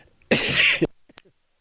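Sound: cough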